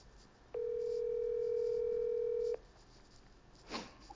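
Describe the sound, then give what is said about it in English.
A single steady electronic ringback tone from an outgoing phone call sounds for about two seconds, clear and fairly loud, then cuts off, leaving quiet background with a brief soft rustle. “So I'm going to call him. He's going to answer.”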